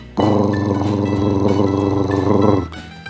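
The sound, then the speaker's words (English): A film projector with a roll-up screen in a dark room kicks on abruptly and runs with a loud, steady mechanical whir and rapid rhythmic clatter, then winds down after a couple of seconds. No one speaks. “And as we sat there on our folding chairs, he started up the projector with that wonderful sound.”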